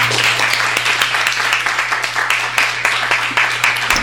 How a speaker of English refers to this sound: Let's give Fran Krause a warm round of applause.